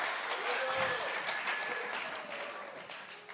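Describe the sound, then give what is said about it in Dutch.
An audience applauds volunteers steadily for a few seconds, a dense, even wash of many hands clapping, with faint voices and cheers mixed in underneath. “Geef onze wonderful vrijwilligers een enorm applaus.”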